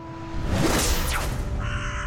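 A single long, harsh raven caw rasps out loud, stretching for about two seconds with a gritty, throaty texture and a faint sweeping swish behind it.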